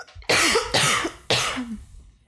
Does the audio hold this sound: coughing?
yes